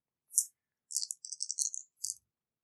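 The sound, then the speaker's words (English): Five metal dice are rolled and clatter across a hard surface: one sharp tick, then a quick burst of bright, tinny rattling clicks, ending with a final click. No voices. “I rolled 5 dice.”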